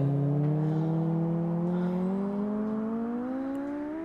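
A sustained electronic synthesizer tone with rich harmonics slowly glides upward in pitch at the end of a 1975 rock track, played on a new keyboard, a steady droning hum that gradually fades slightly, with no voices.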